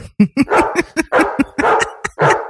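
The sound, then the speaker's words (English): A dog named Harry barks and yelps in a rapid, uneven burst of about a dozen short cries, loud, with whining, whimpering tones mixed in and no talking. “This room had a profound effect on their dog, Harry, which by the way, Harry, their dog, tried to hang itself the day that they moved in.”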